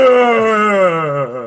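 A person lets out a loud, sustained scream, one unbroken cry lasting over a second with a strained, steady tone that slowly sags in pitch toward the end.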